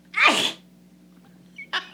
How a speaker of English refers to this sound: Oh, I burped first. Now I gotta sneeze.